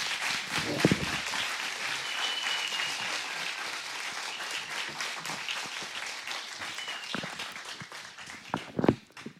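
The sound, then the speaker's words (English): A crowd applauds steadily, a dense wash of many hands clapping that holds for several seconds before thinning out, with a few louder claps near the end. “Can you guys give them a round of applause and thank them?”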